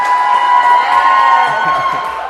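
An audience claps and cheers loudly, a dense, steady wash of applause with whoops and shouts layered through it, sustained without a break.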